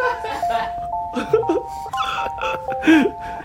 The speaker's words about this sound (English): You know, I didn't know this is the ringing thing on hold until 2 days ago when I was on hold with the phone.